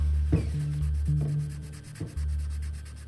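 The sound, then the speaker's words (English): Scratchy strokes of a colored pencil on paper as someone colors in a picture, three short rubbing bursts spaced about a second apart over a steady low background hum. “I went back to coloring.”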